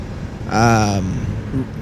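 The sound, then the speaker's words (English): Steady low rumble and hiss of road noise inside the cab of a 2000 Ford F-150 pickup truck called Gold Thunder, continuous throughout, with a brief voiced sound rising over it midway. “So, I'm in Gold Thunder, so if you guys don't like the background noise, I suggest you buy a 2000 F-150.”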